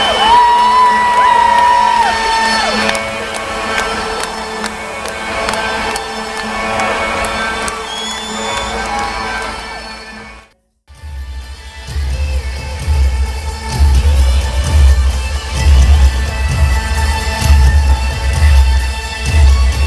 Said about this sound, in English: And there goes the lights. I love this. Listen to the crowd. Isn't that cool? Man.